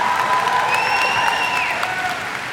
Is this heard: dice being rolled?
no